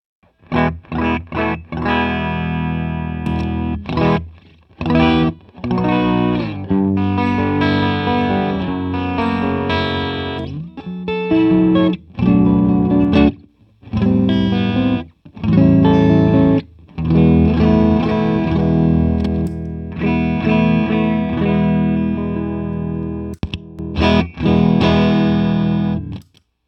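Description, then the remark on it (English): A solo electric guitar played through a clean boost pedal into an amp with its EQ set flat, with bright, full chords and picked phrases in bursts separated by short pauses. It sounds loud, with a light edge and no voices. “start with the Batmobile with a clean boost, and I'll just start adding pedals as we go across.”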